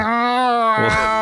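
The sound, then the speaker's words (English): A person's voice imitates a female cat in heat with a loud, drawn-out yowling meow, one steady sustained wail that breaks into a rougher, wavering tail at the end. “I mean, female cats, they get in the heat and they start mowing.”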